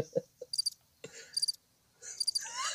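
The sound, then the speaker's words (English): A cricket chirping sound effect: three short, high, trilling bursts at steady intervals, with a few soft low thumps and clicks between them and no voices. “That's the worst cricket sound ever.”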